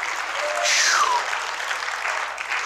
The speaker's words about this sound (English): Woo, somebody clap your hands and shout amen if you're hearing me today.